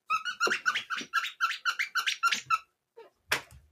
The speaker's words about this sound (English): It's a little dog toy. It's some kind of purple animal, purple dog maybe with like squeaky things inside.